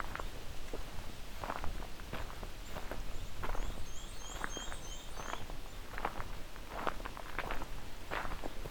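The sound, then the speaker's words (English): A faint, very high-pitched black-and-white warbler trill of quick repeated notes rises briefly at Crane Lake in Bruce Peninsula National Park on July 29, 2020, nearly buried under loud, steady footsteps crunching through brush. “Okay, so we got a black and white warbler here.”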